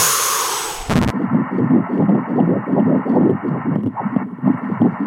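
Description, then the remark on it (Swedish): A fetal heartbeat on ultrasound: fast, steady whooshing pulses thumping rhythmically through a muffled, hissing Doppler background, after a brief burst of noise at the start. “Och då fick jag också höra för första gången bebisens hjärtslag.”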